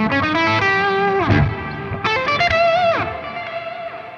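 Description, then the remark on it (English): Electric guitar run through an Empress combined delay and reverb unit, sustained notes smearing into echoing, washy layers with a couple of swooping pitch dives, loud with no one talking. “This is a delay and reverb together that's just on the Empress.”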